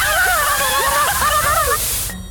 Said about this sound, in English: You want your nooks and crannies? Fine, I'll hose out your nooks and crannies! Ow! Turn it down! I'm sensitive back there.